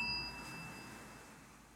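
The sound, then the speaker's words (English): A single bell strikes once with a bright, clear ring, then its tone slowly fades away, lingering softly with no voices. “Similar to the sound of the bell, each sensation has a beginning, staying for a while, and ending.”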